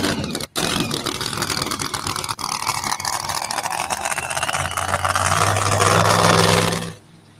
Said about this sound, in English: Likes the power of the big Hemi, the big supercharger.